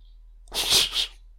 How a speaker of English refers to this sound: Ridiculous slapping sound effects.